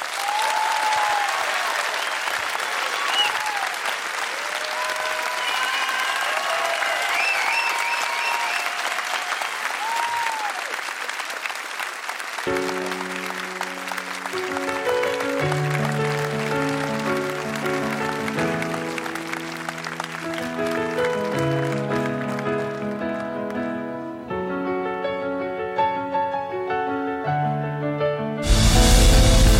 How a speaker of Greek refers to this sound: Θέλω να δώσετε το πιο ζεστό σας χειροκρότημα για το Στέλιο Ρόκκο.